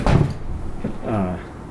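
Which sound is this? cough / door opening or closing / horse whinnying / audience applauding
door opening or closing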